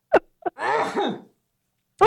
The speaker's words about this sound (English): Hold on, I have to sneeze.